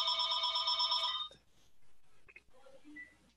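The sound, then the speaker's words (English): A telephone rings loudly for about a second with a bright, warbling electronic bell tone, then cuts off, leaving a few faint clicks and soft tones. “I leave the phones on just in case.”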